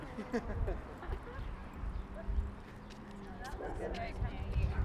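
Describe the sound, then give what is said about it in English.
Mule hooves clip-clop steadily at a walking pace over rough ground as riders travel on mules along the Los Angeles Aqueduct through the Mojave Desert, with a low rumble and indistinct voices murmuring in the background. “we were on the mules heading through the Mojave Desert, and we had to wait for a train to pass.”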